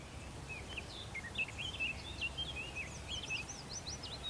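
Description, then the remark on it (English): A busy chorus of small birds sings early one morning in an oak woodland a few miles from a home in Monmouthshire, in bluebell season, with quick, high twittering and chirping phrases overlapping continuously over a soft, low background rumble. No one speaks. “so I got up really early one morning to walk to an oak woodland a few miles from my home in Monmouthshire to see the bluebells and try and hear a few cuckoos along the way.”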